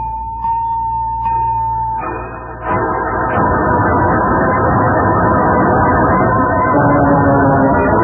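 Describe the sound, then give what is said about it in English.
Busy street traffic rumbles steadily, then swells into a loud, heavy roar as a truck seems to pass and keep grinding along. No one speaks. “He tried to jump in front of that truck.”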